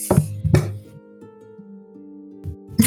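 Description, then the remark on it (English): Two quick, solid knocks on wood, then a pause and a third knock, each a short hollow thud. A low, steady musical drone plays underneath, and no one speaks. “Knock in reply.”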